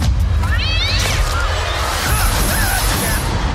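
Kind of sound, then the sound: animal, cat meowing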